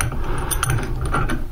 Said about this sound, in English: So I've got to take that off, adjust my wrench so that it will fit, and put it on the nut. And turn the nut counterclockwise to loosen it up.